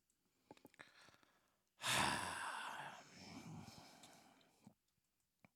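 A single long, breathy snore rasps up suddenly and close, then trails off over a few seconds, with only faint clicks and near-silence around it and no talking.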